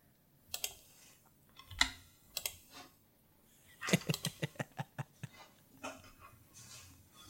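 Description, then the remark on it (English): Sharp computer mouse clicks from a man at his computer, scattered at first, then a quick, fairly even burst of about ten clicks in a row before a few more spaced-out clicks. No one speaks. “That is a man at his computer clicking his mouse on a recording and blowing his nose.”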